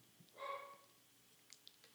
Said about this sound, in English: As we listen to Pippi bark and I drink my beer.